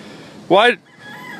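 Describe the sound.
A rooster crossing a road lets out a single short, loud squawking cluck, rising and falling in pitch, followed by quieter background noise and a faint voice.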